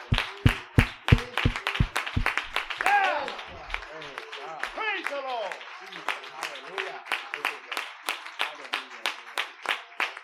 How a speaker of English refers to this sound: Would you stand to your feet and clap your hands to the Lord?